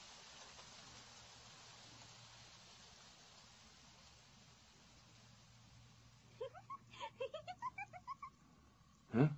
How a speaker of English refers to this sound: When this rain stops, I'll tell you what I can see.